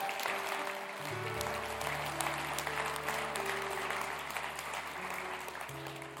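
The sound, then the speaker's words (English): An audience at a worship service claps steadily for several seconds, a dense, even patter of many hands at a constant moderate loudness, while low sustained keyboard chords hold underneath. “Can we clap for that?”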